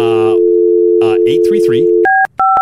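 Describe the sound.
A steady telephone dial tone hums for about two seconds while someone talks over it, then stops and gives way to three quick, distinct keypad dialing beeps.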